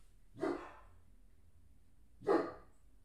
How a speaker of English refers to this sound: That's just our dogs. Our older dog she's an old lady, and she's losing it a little bit, and anytime anyone walks by now, she's like, and then our 1.5-year-old German Shepherd goes nuts, and it's a fun situation.